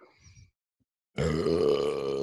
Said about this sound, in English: Oh yeah, that was. I mean, in what, four podcasts, he has a decent burp.